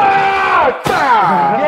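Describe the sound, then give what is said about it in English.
A T-shirt cannon fires a shirt with a single sharp, forceful pop midway through, surrounded by loud crowd yelling and whooping that swells again right after the shot. “I've got here it comes. Out of the fucking shirt cannon.”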